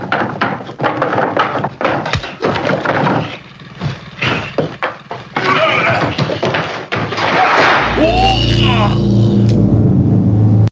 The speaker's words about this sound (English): That door slamming does it for me, baby.